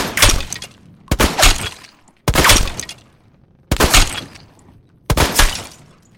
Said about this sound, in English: You come around the corner. As you come around the corner, he is on the ground. He starts firing at you.